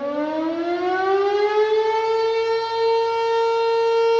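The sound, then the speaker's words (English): A loud siren behind the volunteer fire station in Minden, Douglas County, sounding twice a day and heard for miles, winds up in a long rising wail, its tone climbing and then holding steady and strong, with no voices. “The siren wails from behind the town's volunteer fire station and can be heard for miles.”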